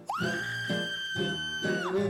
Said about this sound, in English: dreaming of a fright-filled Christmas, just like the ones in Germany, where in treetops that glisten, the Krampus still listens to the sounds of the screaming down below.